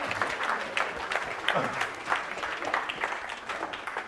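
An audience claps steadily for several seconds, a dense, continuous patter of many hands at moderate loudness, with faint voices mixed into the crowd noise.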